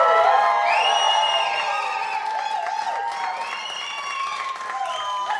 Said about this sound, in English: Y'all give one more round of applause for this excellent band.